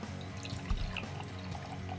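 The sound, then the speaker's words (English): Liquid glugs and splashes steadily as beer is poured from a bottle into a glass, a continuous watery trickle with faint fizzing, no voices present. “All right, I'm pouring it.”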